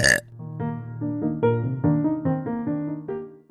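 A long, loud burp that rumbles on for several seconds, its pitch wobbling and stepping up and down like a croaky drawn-out belch, with no talking.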